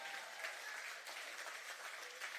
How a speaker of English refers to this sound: Yeah, if you're going to clap, give him a good hand clap today.